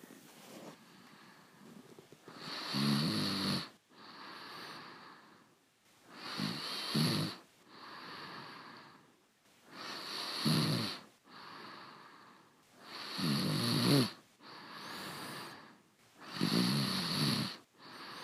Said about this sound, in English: Lying here the whole time, and you woke yourself up snoring. I did snore? Yeah. I was really snoring. Yeah, you were really snoring.